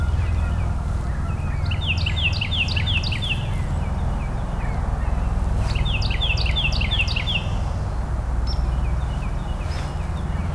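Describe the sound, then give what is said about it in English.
A Carolina wren sings two bright bursts of rapid, rolling repeated phrases, a few seconds apart, over a steady low rumble of traffic. “So they're a good sign of spring, but Carolina wren, they'll probably sing more right now. And there's another one singing.”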